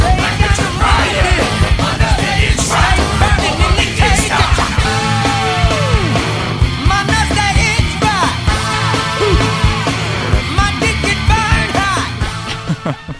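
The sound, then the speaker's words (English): A loud, dense rock song with raw screamed vocals over pounding drums and brass horns punching through, playing continuously at full volume. “The screams, they're so good.”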